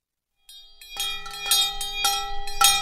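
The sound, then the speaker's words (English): Two large hand bells, rung by the Reverend Stephen Blackmer on a Sunday morning at a church without walls on a hilltop dirt road in Canterbury, New Hampshire, ring out in a steady rhythm, about twice a second, their bright overlapping tones sustaining and building between strikes. Fairly loud, with no voices. “The Reverend Stephen Blackmer is ringing two large hand bells.”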